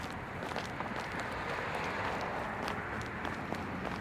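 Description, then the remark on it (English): A dense, steady wash of dinnertime crowd noise in a bar, many overlapping voices blurred into a constant murmur, with occasional sharp clinks and knocks popping out of the din. “By the sound of it, the dinner crowd wasn't too shabby, and the place smelled even less shabby.”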